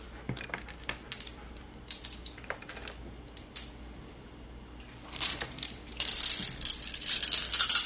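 dice being rolled

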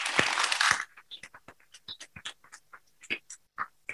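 audience applause

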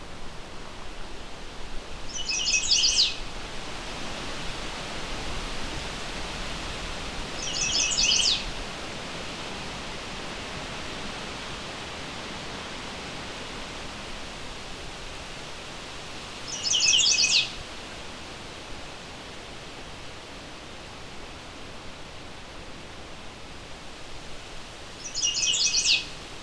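warbler song

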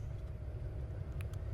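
road traffic

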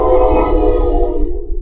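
passing train

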